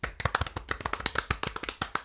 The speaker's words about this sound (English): Golf clap